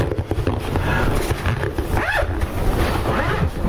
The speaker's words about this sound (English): I got it in the case. I'm going to zip it back up.